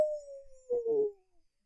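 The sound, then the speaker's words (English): A single drawn-out dog howl imitated by a human voice, a steady tone sliding slowly downward for over a second, roughening briefly near its end before fading out. “cornering her you and just going, howl. Ow!”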